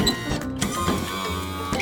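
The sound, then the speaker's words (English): A motorized wheelchair hums along with a steady electric whine, broken by a few short clicks and bumps as it moves, fairly loud and with no voices. “A motorized wheelchair helps people who have trouble walking move around. It's a wheelchair that's moved by a motor.”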